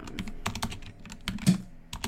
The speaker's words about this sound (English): Okay, and now I'm going to stop typing and stop.